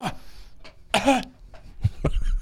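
A few rough, bursty coughs with a throaty, clearing quality, moderately loud, separated by short pauses, with some faint background noise between them.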